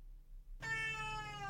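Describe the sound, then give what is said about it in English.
A cat lets out a single drawn-out meow that turns into a yawn, clear, starting after a brief quiet pause and sustaining with a bright harmonic tone until the end. “we're talking about Rascal, which is Crystal's cat.”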